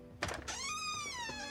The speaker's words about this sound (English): Shit, who the hell could that be? I didn't think anyone even knew I was staying out here. Single woman alone in an isolated cabin gets a mysterious knock on her door. Kinda sounds like the start of a horror movie.